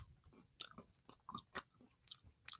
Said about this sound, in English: They hear me chunking, crunching. Oh, what are they? Oh, they're planters. See? Yeah. Planters, salted peanuts.